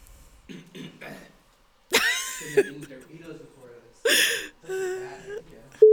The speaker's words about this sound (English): Get all the burps out now. I have to sneeze, I think. You have to sneeze? No, I have to burp.